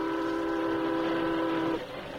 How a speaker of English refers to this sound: rounded a bend in the tracks, they saw the steaming iron horse roaring toward them.